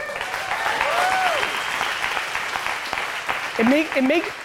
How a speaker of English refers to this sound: It makes me very happy that you guys clap that up. I'll tell you why. That level of collective response to that statement really makes me feel good, because I'm like, cool, that's what's up.